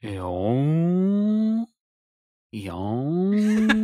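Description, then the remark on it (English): A person imitates a whale call with two long, loud, moaning tones, each sliding upward in pitch and then holding steady, separated by a brief pause of silence. “Those whales go...”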